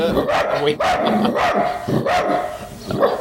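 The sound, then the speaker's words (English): Dogs bark repeatedly and loudly, five or so sharp, overlapping barks at an uneven pace over a busy background, with no pause between them. “G'day, dogs. Wolf. The dogs.”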